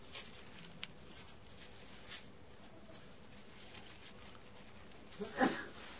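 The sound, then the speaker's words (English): A single short sneeze bursts out near the end, after several seconds of faint, steady background hiss with no one speaking. “Bless you.”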